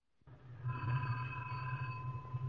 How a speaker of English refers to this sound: Hold it till I get this phone.